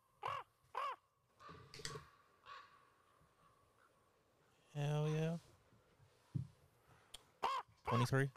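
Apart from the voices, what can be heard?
raven cawing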